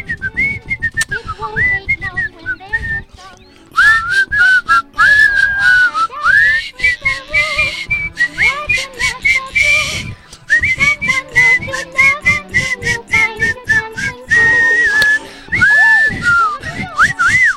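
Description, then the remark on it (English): A person whistles a lively, continuous tune for several seconds, the melody bending and sliding between notes over a rhythmic backing of steady beats, loud. “It's a whistling event.”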